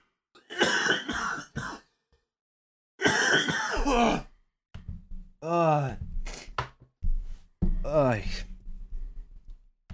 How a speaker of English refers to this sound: I'm gonna cough for a while.